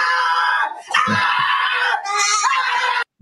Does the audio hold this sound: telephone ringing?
no